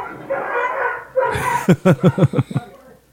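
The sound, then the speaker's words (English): Dogs barking outdoors in town: a drawn-out howling yelp first, then a quick run of about seven sharp, evenly spaced barks, fairly loud. “I think all the dogs in town are outside at the same time.”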